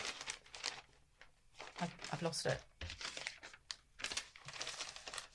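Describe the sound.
Paper crinkles and rustles in bursts as newspaper cuttings from The Guardian are shuffled and leafed through while searching for one piece, with a person briefly speaking over the handling.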